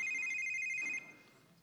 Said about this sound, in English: that sounds like your phone.